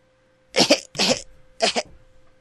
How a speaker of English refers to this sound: Before I cough here, hold on.